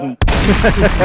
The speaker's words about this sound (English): Can I get a gunshot?